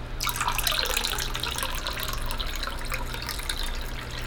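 A carbonated drink pours steadily into a glass, a continuous splashing stream mixed with dense crackling bubbles for about four seconds over a faint low hum.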